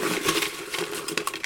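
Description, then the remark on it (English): Folded paper slips bearing years rustle and tumble inside a hand-held bucket as it is shuffled before one is drawn, a steady dry crinkling with small scattered clicks and a few sharper taps near the end, with no voices. “I have a bucket in my hand. We got quite a few years left in here, too. I'm going to shuffle it around a little bit.”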